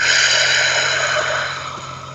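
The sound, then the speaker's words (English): After a breath in through the nose filling the belly, a long, steady breath of air is pushed out slowly through the mouth, as if through a straw. It gradually softens and trails off toward the end. “See how big you can make your belly, and then out through your mouth like through a straw.”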